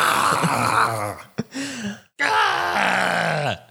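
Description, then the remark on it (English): A voice imitates the scream of a Cockney-accented girl selling flowers, pitched about two octaves too low so it comes out like a strained groan: two long, loud cries separated by a brief gap, the second sliding downward at the end. “Also, I did it like 2 octaves too low, but...”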